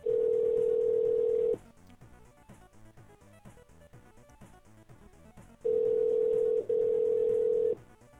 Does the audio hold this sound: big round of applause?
no